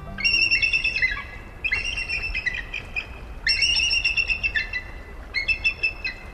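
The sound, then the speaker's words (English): Shrill, piercing eagle calls ring out in repeated bursts, each a rapid series of high chittering notes, heard clearly over a low outdoor rumble with brief pauses between them. “Two adult eagles flying high above the ground confront each other, talons outstretched.”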